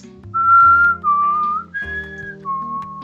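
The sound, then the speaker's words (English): A short whistled tune of four sustained notes, rising and falling, clear, with a soft low accompaniment humming underneath and no talking. “But I just remember kids were whistling that in class.”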